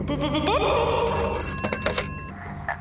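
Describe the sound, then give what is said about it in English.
A telephone rings on an outgoing call to the caller's boss, a steady, high, electronic-sounding ring tone that holds for a couple of seconds over a low, rumbling background, with no talking. “I gotta call my boss, let him know I'm gonna be a little late this morning.”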